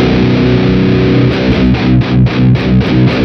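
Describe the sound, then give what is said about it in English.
A heavily distorted electric guitar, down-tuned to B, plays a pedal-note riff, starting with a sustained chord and then breaking into rhythmic chugging palm-muted hits, loud. “So just to get back on the riff a little bit here, it's... again, I'm down-tuned to B.”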